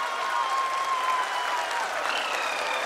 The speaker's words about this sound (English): People are applauding.